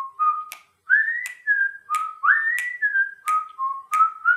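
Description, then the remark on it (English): Someone whistles the bright, bouncy theme tune of The Andy Griffith Show, the melody gliding between notes, with sharp clicks, like finger snaps, keeping a steady beat beneath it. “I can still whistle the song.”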